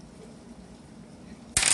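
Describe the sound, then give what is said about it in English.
After a stretch of quiet room tone, a sudden bright clatter of dice rolled on a hard tabletop bursts in loud, rattling briefly right at the end. “I don't have mine because I have the really cool dice that I want to roll.”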